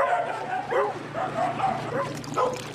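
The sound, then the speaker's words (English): A dog gives a quick series of high, yelping barks and whines, about five or six in a row, fairly close and steady against a faint background hum. “Needs more dog.”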